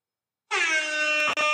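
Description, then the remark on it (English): A loud, sustained air horn sound effect starts abruptly after a brief silence, its bright stacked tones holding steady, with a quick stutter near the end before it continues; played right after Jordan is named as the top shooting guard. “Let me give you some noise after each one. You know what I'm saying? All right. That works. Air horn.”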